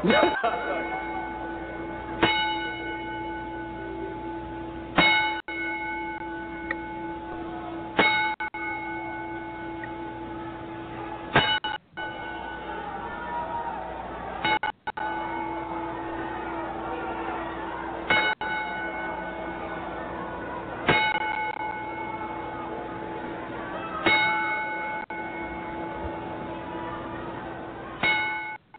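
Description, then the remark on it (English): A boxing ring bell tolls about ten times as a ten-bell salute for a fighter who has died, slow and evenly spaced every three seconds or so, each clear metallic ring hanging and fading before the next strike. “Give him the bell.”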